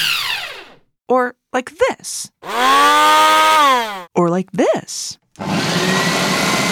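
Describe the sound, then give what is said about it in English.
A voice imitates a kitchen blender, a big glass jar on a base with buttons, running, with buzzing, whirring vocal hums that rise and fall in pitch, a long sustained drone, then a steady noisy rush at the end, with brief spoken words in between. “A blender is a machine that blends food together.”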